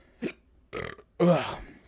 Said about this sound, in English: Now, the burping is going to be, you know, a side effect of all everything that I just did to myself